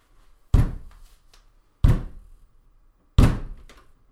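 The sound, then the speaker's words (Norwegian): A door being opened, heard as three heavy, solid thuds spaced about a second and a half apart, each with a short resonant decay, with no voices. “For å se hvem som stod bak døra, så var jeg nødt til å åpne den opp.”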